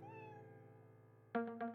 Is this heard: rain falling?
no